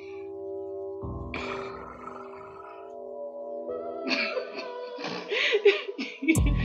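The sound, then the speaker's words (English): A voice imitates a drum roll with a sustained, buzzing trill that wavers for several seconds, then breaks into breathy, laughing bursts toward the end. “That was my drum roll.”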